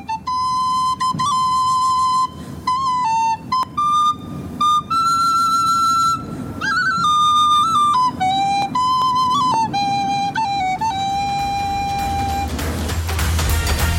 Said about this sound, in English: performing the song of the same name on the tin whistle as part of a piece for RTE